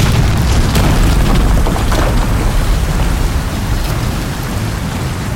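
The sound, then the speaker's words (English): A deep, booming blast from a fuse-lit explosion in a mine tunnel about 100 feet below the surface rumbles into a heavy, continuous roar of pouring water as the sea sweeps through the tunnels, loud and steady throughout, with a few brief crackling bursts near the start and no voices. “We could hear the water pouring down as though from a great height.”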